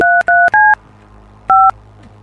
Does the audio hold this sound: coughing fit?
no